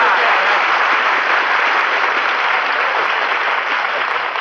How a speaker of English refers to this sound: I appreciate that, folks. You know, applause is food for an actor, so thanks for the lunch.